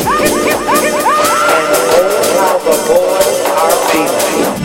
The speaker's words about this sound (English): The divas start screaming.